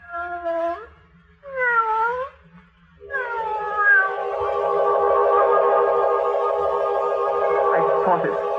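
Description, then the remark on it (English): A cat meows twice in short calls, then lets out a long, drawn-out wavering yowl that holds for several seconds, loud, with no talking. “The music and the cat with the yellow eyes watching from the doorway like death.”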